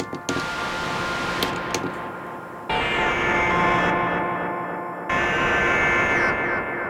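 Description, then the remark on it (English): Dense, glitchy granular synth texture smeared by a Dreadbox echo effect, with scattered clicks early on, then abrupt jumps into new sustained, shimmering layers twice. Steady, fairly loud, and no voices. “Makes very interesting artifacts. I love those. And with the echo effect by Dreadbox, it's very simple, it only has feedback, time and mix, but it sounds very charming, so if I bypass it, the sound is like that.”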